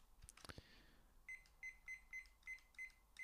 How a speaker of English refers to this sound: So as always, got my wee cooking timer here.